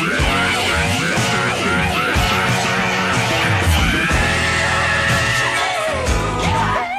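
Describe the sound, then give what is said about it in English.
A raw, strained male voice scream-sings lyrics in a recorded song, over a full, loud band mix with driving drums and guitars, the singer also playing all the instruments on this version; the vocal is sustained and harsh throughout the passage. “where he's truly screaming lyrics and it's not just an accent of some kind.”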